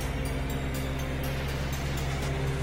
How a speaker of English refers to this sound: Because you hear that? That's the only way you get milk. Reefer units.